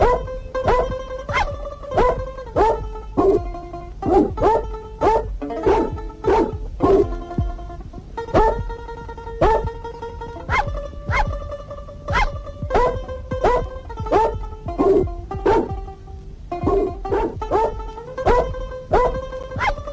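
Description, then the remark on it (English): A melody built from dog barks, each bark pitched to a different note and edited into a quick, steady rhythm for a pop record. The barks come loud in an unbroken stream, with no talking. “He eventually used the same techniques, turning the well-positioned barks in pop music and carols for a wider audience.”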